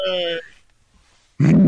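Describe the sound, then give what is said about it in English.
A monkey lets out a short, loud, tonal call, then after a second of silence gives a rough, gravelly grunt. Both sounds stand alone. “Monkey.”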